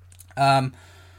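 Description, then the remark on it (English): A single short cough from a speaker who has COVID, abrupt and fairly loud, lasting only a moment before fading back into quiet with a faint low hum. “I'm still struggling with COVID, so apologies if the edit's a bit weird or if I cough briefly like that.”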